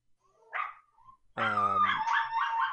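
Dogs bark, a short yip followed by a loud, drawn-out bark that trails into a whining howl, with no talking over it.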